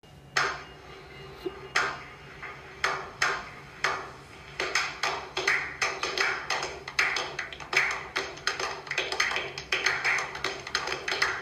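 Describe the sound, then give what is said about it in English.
Applause recorded at a stand-up comedy show: a few scattered, sharp claps at first, then the clapping thickens into a steady, fairly loud patter of many hands, with no voices. “That round of applause you just heard was actually recorded in one of my stand-up shows.”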